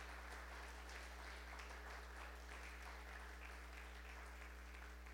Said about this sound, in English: We just applaud you.